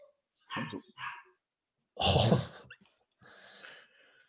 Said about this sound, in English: Sorry, my dogs. Even my dogs are getting involved.